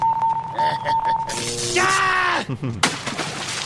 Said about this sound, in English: The incessant beep of the global positioning system is all the companionship I need.